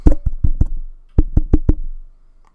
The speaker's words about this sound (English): Insert knocking sound.